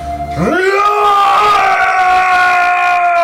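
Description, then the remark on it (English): A person imitates Magog shouting: one long, full-throated yell that swoops up in pitch, then holds steady and strained for nearly three seconds, alone with no talking. “Magog shouts.”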